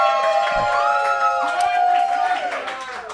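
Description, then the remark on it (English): An audience cheers on cue at a judged debate event, many voices shouting and whooping together in a sustained, high-pitched roar with a few claps, tapering slightly toward the end. “And when I'm right, I want you guys to cheer. Give that a shot right now.”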